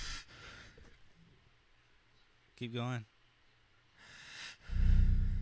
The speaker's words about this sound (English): As you can hear my breathing.